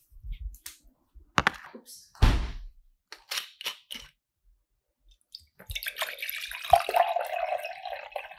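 A few sharp knocks and glassy clinks, then a steady, splashy stream of wine being poured into a glass for a partner for nearly three seconds, with no one speaking.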